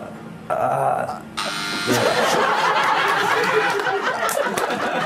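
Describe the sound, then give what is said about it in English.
A quiz show buzzer, pressed early by a contestant, sounds with a harsh, steady buzz, then loud audience laughter and noisy crowd chatter swell up and continue to the end. “shouldn't buzz in first is the answer.”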